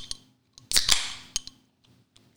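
Sharp metallic clicks of a ring prying at a beer bottle cap, a brief hissing burst of fizz as it pops, then a few more scattered taps and clicks, with no talking.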